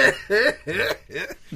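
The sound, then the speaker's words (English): A voice lets out four quick, voiced bursts, a cough dressed up to sound like laughter, each burst rough and breathy, with no talking. “Are you going to do that the whole show, cough?”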